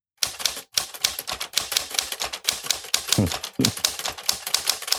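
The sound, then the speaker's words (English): Rapid, steady keyboard typing by a man fills the whole stretch, a dense run of sharp clicks, with a couple of heavier thumps partway through and no voices. “All I hear over there again is him typing.”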